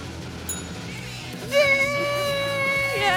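A bell rings once with a bright, steady tone full of overtones. It holds at an even loudness for about a second and a half before cutting off, after a short stretch of quiet.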